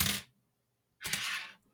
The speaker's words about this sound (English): I'm going to flip a coin. hello coins. Here you go. Heads higher, tails lower?